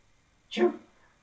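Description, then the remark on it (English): One short, odd-sounding sneeze: a sharp hissy burst that quickly drops into a lower, throaty tail, loud and alone against near silence. “That was such a weird sounding sneeze.”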